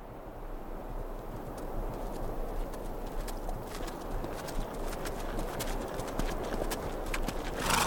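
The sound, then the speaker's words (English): A horse trudges steadily over hard ground in biting December cold, its hooves landing in an even, repeated clip-clop rhythm, moderately loud over a low rumbling background, with no one speaking. “24-year-old Charlie Goodnight huddled inside his coat as he and his horse trudged through the biting cold of a December day in 1860.”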